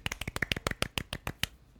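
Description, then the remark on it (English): Quiet, polite golf clapping for a team member being introduced: about a dozen light, crisp claps in a quick, slightly uneven patter that stops after a second and a half, with no voices. “Another golf clap.”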